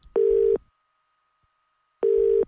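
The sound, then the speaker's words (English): A telephone line tone on an outgoing call to Billy Moore: two steady, mid-pitched beeps, each about half a second, with a long silent gap between them. Clear, with no voices. “All right, let's dial up Billy Moore.”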